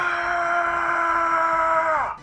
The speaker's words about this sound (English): I hear … screaming, and I turn around